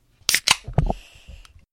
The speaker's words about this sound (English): Dad, can you open my bubble water for me, please?